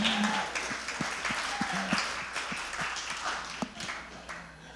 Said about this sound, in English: I feel like we should clap for you guys.